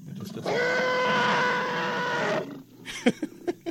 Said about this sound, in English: That's a real elephant. That's an African bull elephant.